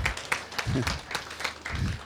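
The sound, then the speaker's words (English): Scattered applause from a crowd, with irregular sharp claps spread over a couple of seconds while voices talk underneath, moderately loud. “That's a clap for my wife saying, land.”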